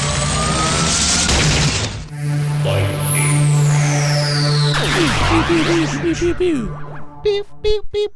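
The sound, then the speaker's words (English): A loud synthesized lightning sound effect: a steady electric buzz and hum, a long descending whistling sweep, warbling zaps, then a burst of sharp crackling snaps at the end. “do you want to play that lightning sound for us, please?”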